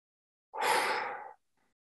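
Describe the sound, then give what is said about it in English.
A single deep breath drawn in through the nose as conscious breathing, fairly loud, lasting under a second, with silence before and after and no talking. “So literally breathing in through the nose.”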